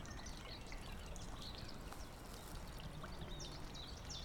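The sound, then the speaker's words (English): Scattered bird chirps and short calls ring out by a pond in woodland over a steady, rushing outdoor wash like trickling water or wind, as the wind drops off a little, fairly quiet overall, with no one speaking. “But as you can just soak up here, just the sounds of the birds.”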